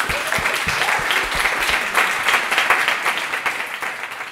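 A crowd applauds steadily, a dense wash of many hands clapping at once with a few sharper individual claps standing out, holding an even loudness throughout without any voices.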